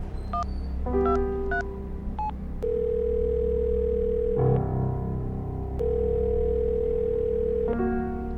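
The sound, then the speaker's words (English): Bishop, staking out Mr. Lucky's store, places a call on his phone: a few quick keypad beeps give way to long, steady telephone ringing tones, two drawn-out rings heard clearly over a low rumbling background, with no one speaking. “Bishop ducks down quickly and grabs his phone.”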